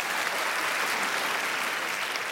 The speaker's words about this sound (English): I can hear you. Great job, everyone. You clapped loud on the first try.